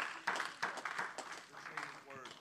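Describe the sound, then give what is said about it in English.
A group claps their hands in an uneven, scattered burst of sharp slaps for a couple of seconds, fairly quiet overall, with a voice calling out near the end. The clapping is a hand clap of praise to the Lord for his word, given at an evening sermon. “Give the Lord a hand clap of praise for his word tonight.”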